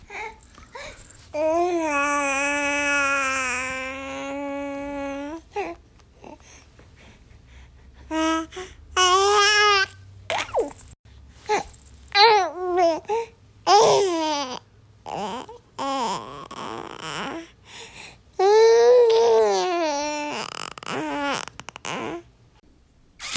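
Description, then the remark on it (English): A three-month-old infant babbles on its own, starting with a long drawn-out coo, then a string of shorter, wavering squeals and gurgles with brief pauses, some rising high in pitch. “You obviously have kind of 3 months of existence outside in the real world, so a wealth of knowledge that you're really tapping into.”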